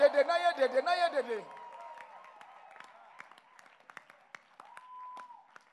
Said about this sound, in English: Clap your hands and lift up your voice and give the Lord a shout.